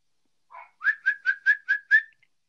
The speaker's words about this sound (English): Sometimes you just got to say your name and whistle at her for, like, realize everything's going to be okay.